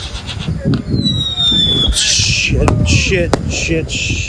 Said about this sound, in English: And that's when stuff started getting crazy. They started shooting off fireworks.